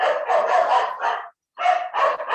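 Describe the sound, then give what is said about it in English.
A dog walking by barks in a loud burst of several rapid barks, pauses briefly, then barks a few more times. “But there's a dog walking by, like it's so rude.”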